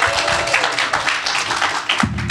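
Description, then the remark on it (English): An audience at BayCon 2017 bursts into a round of applause for the authors James S.A. Corey, Ty Franck and Daniel Abraham, many hands clapping in a dense, steady wash of crisp claps that holds at a fairly loud level throughout, with a low thump near the end. “Let's give them a round of applause for being here.”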